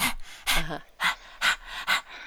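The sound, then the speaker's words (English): A person imitates a dog's panting: five quick, breathy huffs in a steady rhythm, fairly loud, with no talking. “Very good one to woof with the pants.”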